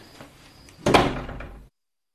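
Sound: door being opened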